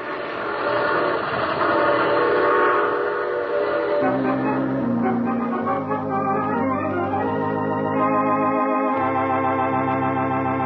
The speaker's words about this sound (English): I take this same train every week at this time.